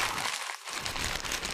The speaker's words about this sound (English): I just slapped the joint on the mic. That's what it sounds like.